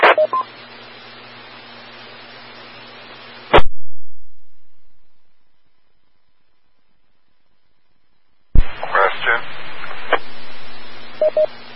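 Bursts of hissy, band-limited radio static with steady hum tones, cut off abruptly by a squelch click, then a long silence before another noisy transmission returns with faint garbled chatter and brief beeps; radio interference from a stuck-open microphone.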